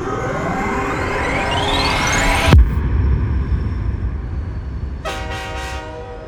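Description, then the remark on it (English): A train travelling from London up north to Loughborough, England, rumbles steadily along as a rising whine climbs and cuts off sharply, then a loud, sustained horn blast sounds over the clatter near the end. No one speaks. “I had flown from India to London and was taking a train up north to Loughborough to study for my A-levels.”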